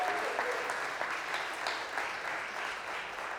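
A crowd claps steadily and continuously, a dense wash of many hands at an even level from start to finish, with a few sharper claps popping out of the mix.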